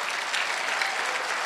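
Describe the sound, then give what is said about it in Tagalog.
A church audience applauds steadily after the preacher asks them to clap louder, a dense, even wash of many hands clapping at once with no pauses and no voices standing out. “Lakasan niyo yung palakpak niyo.”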